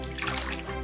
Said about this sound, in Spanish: Te voy a servir un poco de agua fresca de la tinaja.